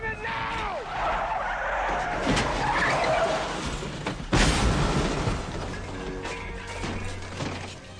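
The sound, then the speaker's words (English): A car skids with screeching tires, then slams into something with a loud crash around the midpoint, followed by scattered debris and engine rumble, with muffled voices underneath; the driver wrecks the car trying to get away while Bruce Willis shoots at him. “All right, so he wrecks the car trying to get away.”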